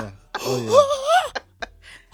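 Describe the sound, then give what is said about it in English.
A person imitates a sharp, voiced gasping breath, drawn in with a rising, strained pitch for about a second, followed by a couple of short breathy clicks. It is fairly loud. “Do the entrance breath. It's like a that gasp.”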